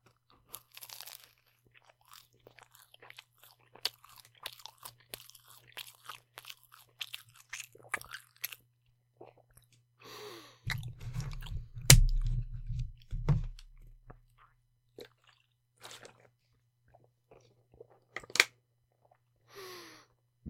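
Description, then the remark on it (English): Crunchy chewing of a capicola sandwich, with wet bites and soft smacking repeating irregularly for about twenty seconds, plus a brief lower thumping burst partway through. No one speaks. “If I eat the bread too fast, it's gonna definitely give me hiccups.”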